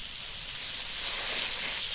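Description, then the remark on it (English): A steady, unbroken spray hiss, bright and airy, as a person is sprayed until soaked, holds at an even moderate loudness for the full two seconds with no voices over it. “Please stop spraying me.”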